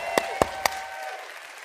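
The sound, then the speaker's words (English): Sparse applause from a church audience at the second service: three sharp, evenly spaced claps in under a second, each followed by a lingering ring, then quiet. No one speaks. “Come on, second service, give yourselves a hand.”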